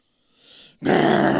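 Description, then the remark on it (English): A breathy rumble swells up, then erupts into a loud, harsh gargoyle growl full of gravelly low texture, cutting off abruptly after about a second. “The gargoyle growls at you from shore and slashes at one of its razor-sharp claws to the air.”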